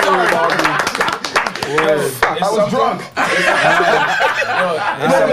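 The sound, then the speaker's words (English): A few people clap in quick, uneven bursts while laughter and excited chatter carry on loudly over the top for the whole stretch. “Yo, we gotta clap it up for this nigga.”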